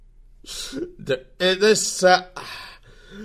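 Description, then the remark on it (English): A loud run of harsh, raspy coughing bursts, a couple of short hacks and then a longer strained fit, with a brief throaty sound trailing off at the end. “I'm coughing!”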